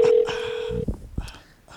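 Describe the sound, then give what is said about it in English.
A steady electronic telephone tone holds for nearly a second, followed by a short burst of dialing beeps and clicks as a phone call is placed to a man, with faint background voices murmuring toward the end. “Should we try him again? Call him right now.”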